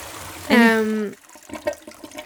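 A toilet flush sound effect bursts in loudly for about half a second, then cuts off abruptly as people begin talking again.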